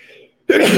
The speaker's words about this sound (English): Bless you. Wow. There's going to be a sneeze count on this. I've got to be at least at 15.